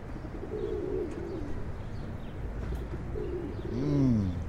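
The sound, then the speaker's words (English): A pigeon coos in low, throaty warbles, one soft call early and a fuller rolling coo near the end, over a steady outdoor rumble with no voices. “It's a pigeon cooing.”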